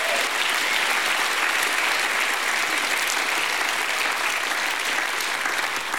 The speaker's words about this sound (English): Has anyone in the house been forgiven? Give God a hand clap.